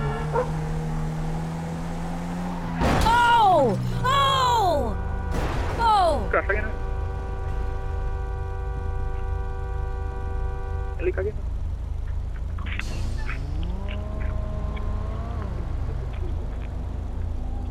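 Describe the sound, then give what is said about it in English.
A car engine hums and revs, broken by a couple of loud, sharp crash impacts early on as the car smashes into a parked car, followed by a long steady tone and then the engine whining upward again. “I just smashed into a parked car.”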